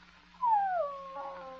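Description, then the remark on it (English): A puppy lets out a single drawn-out whimper that starts high and slides downward, then trails off into a softer, wavering whine over a faint low hum, with no voices. “Sorry, little puppy.”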